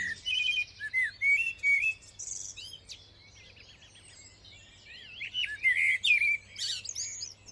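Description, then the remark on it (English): Several birds, such as blackbird, song thrush, greenfinch, chaffinch, wren and robin, sing and chirp at once in a dawn chorus in Springfield Park, bright overlapping whistles and trills in bursts with a brief lull in the middle, over a low steady hum of background noise. “we made lots of different dawn chorus recordings of the bird song in Springfield Park.”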